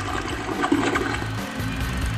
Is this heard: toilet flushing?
yes